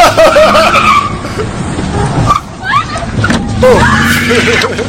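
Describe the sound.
A truck's engine roars as its tires squeal and skid while it drives into protesters, with raised voices and shouting mixed into the loud, chaotic scene.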